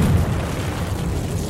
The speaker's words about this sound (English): The IED explosion right back that way.